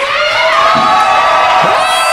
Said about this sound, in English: Horrible. Just horrible. Listen to that collective screech. Ugh.